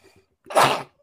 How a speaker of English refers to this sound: hold on, I gotta sneeze.